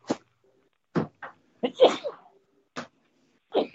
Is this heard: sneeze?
yes